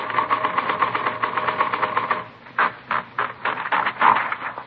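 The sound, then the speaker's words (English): A mechanical typewriter clacks in a fast, steady run of keystrokes, then slows to a few heavier, evenly spaced strikes, typing a sample to check against a forged letter. Fairly loud, with no voices. “No, this isn't the typewriter we're looking for.”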